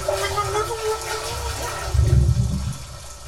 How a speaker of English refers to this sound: Oh, there's water filling.